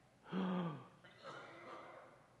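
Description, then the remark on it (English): A single sharp, voiced gasp made by a voice imitating the sound, loud and quick, followed by a softer breathy exhale trailing off. “It's like this gasp.”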